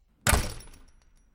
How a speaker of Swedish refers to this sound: Hon tog sin jacka, tog på sig skorna och stoppade mobilen i fickan innan hon gick ut och smällde igen dörren efter sig.